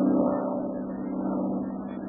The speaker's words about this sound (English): Well, even as he talked with the Dragon Lady, a single-engine plane was heard high overhead.